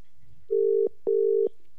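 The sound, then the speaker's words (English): Two steady ringback tones sound over a phone line as a radio station, Hot 92, calls a guest to put him live on air. Each tone lasts about a third of a second with a short gap between them, clear and fairly loud against faint low background noise. “Okay, it's ringing. That's always a good sign.”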